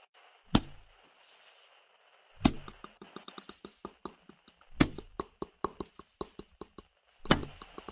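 Four heavy, wet-sounding slaps land a couple of seconds apart, each with a low thud, while sharp, irregular clicks patter between them over a faint steady hiss. No one speaks.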